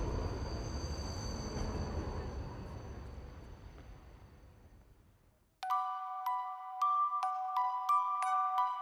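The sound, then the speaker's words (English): A heavy elevated train roars past with a deep rumbling clatter that slowly fades away, then a bright, repeated ding-dong chime rings out clearly. “The noise and clatter of the streets came in at the window, and the elevated train went thundering by.”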